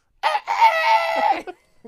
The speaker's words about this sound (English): Your neighbor has chickens? Yeah. You just can't have the fucking roosters.